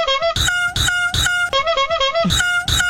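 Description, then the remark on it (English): Loud, rapid clown-horn honks repeat in a steady rhythm, blended with a peacock's sharp, nasal mating calls, with no one talking. “So here's clown horns and peacock mating.”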